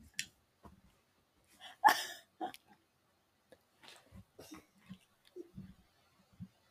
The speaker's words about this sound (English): My mom is at my house and she keeps falling asleep, and that is the sound that her body makes when she falls asleep. Some would call it snoring, others would say, wow, that got to be a wild animal let loose in your house.